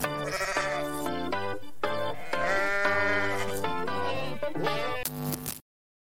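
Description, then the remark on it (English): A goat bleating sound effect plays loudly, a run of several wavering, nasal cries following one another with barely a pause for about five seconds, then cutting off abruptly. “So let's get into it, man. Hit the button, baby. Goats of the week”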